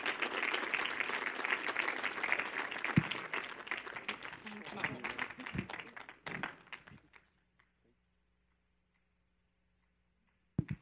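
A crowd applauds with dense, steady clapping for about seven seconds, then the applause fades quickly into near silence with only a low background hum.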